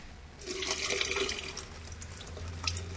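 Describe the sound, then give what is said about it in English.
Water pours steadily into a sink for a few seconds, a broad splashing rush with a low gurgle underneath, moderately loud, with no one talking. “So do you want to just pour some of that water down the sink then”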